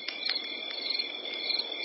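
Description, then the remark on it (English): Crickets chirp steadily at night, played on radio in place of a jingle leading into a segment. A dense, continuous high-pitched trilling with regular pulsing accents over a soft, constant background hum, moderately quiet and unbroken throughout. “And after dark, of course, crickets.”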